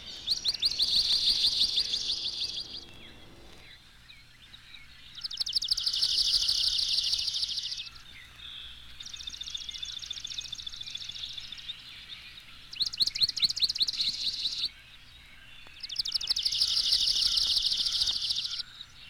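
A swamp sparrow sings repeated musical trills, alternating between two pitches, about five bursts separated by short pauses, clear with no talking.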